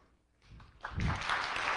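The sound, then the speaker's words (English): An audience breaks into clapping for a man who has quit his job, after a quiet moment, swelling quickly into a dense, steady wash of applause that holds to the end, with no voices over it. “They're clapping because the guy's basically gave up his job and quit, and his job is so dear to him.”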